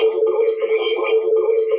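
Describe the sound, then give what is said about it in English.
A loud, sustained voice-like tone smeared by heavy reverb, its echoes blending into one continuous, washy ringing sound with no clear breaks for about two seconds. “It's a bit of reverb.”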